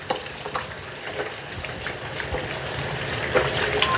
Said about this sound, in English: So we're running water and we don't have any sound yet. Got a bit of soap going here. Now I'm going to do the hand washing.